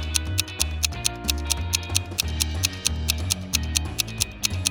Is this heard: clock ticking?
yes